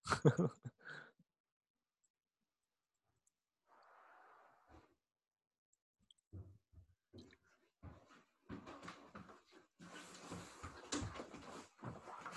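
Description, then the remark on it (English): Dog noises in a quiet room: short snorts and sniffs, a soft breathy huff, then a run of scuffling, snuffling bursts toward the end. No one speaks. “The fun of having a dog.”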